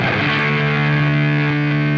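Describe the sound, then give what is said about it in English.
An electric guitar pushed through a buzzy fuzz pedal holds one thick, saturated note for about two seconds, loud and steady, with a gritty, electrical-sounding edge and no voices. “but doesn't it seem kind of just more electrical than a typical fuzz?”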